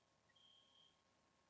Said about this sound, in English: Well, you'll have to come back at a time where we're not completely derailed by my annoying fire alarm.